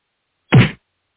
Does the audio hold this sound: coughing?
no